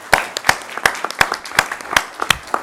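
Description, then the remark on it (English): Steady, rhythmic hand clapping, sharp claps about three per second at a moderate level with a few softer claps in between, and no talking. “I applaud you for that.”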